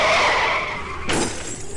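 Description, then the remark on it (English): A semi truck (an 18-wheeler) swerves off the road. Its tires skid with a loud, drawn-out screech, then it slams into the forest with a sudden crash and scattering debris. It is loud throughout, with no voices. “An 18er just swerved off the road and crashed into the forestry.”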